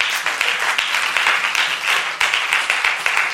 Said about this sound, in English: I think we should clap for Jesus.